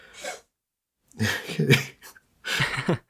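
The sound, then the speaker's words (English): A cat hacks up a hairball in three harsh, wheezy retching bursts, the first brief and the next two longer, with short pauses between. “I hear like yeah, a coughing. She's got a hairball.”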